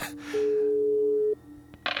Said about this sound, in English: Oh! We've got something. It sounds international. Something wrong with this phone.